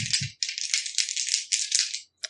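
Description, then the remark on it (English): Dice are rolled for an opposed agility check in a tabletop roleplaying game, clattering and rattling steadily for about two seconds with a dense, bright rattling texture, opened by a couple of low thumps and ending with a brief final click. “Roll me opposed strength, I guess? Strength? Or no, opposed agility.”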